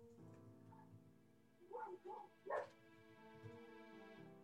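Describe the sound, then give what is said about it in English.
Three short dog barks in quick succession mid-clip, coming from somewhere down the hall, over a steady low humming drone; no one speaks. “Someone has just summoned dogs somewhere down the hall.”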